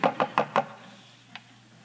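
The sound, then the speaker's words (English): Four quick, evenly spaced knocks on a wooden surface, crisp, followed by a single fainter tap after a short pause. No voices. “You're going to do a lot of knocking.”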